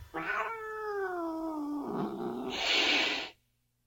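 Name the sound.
cat meowing and yowling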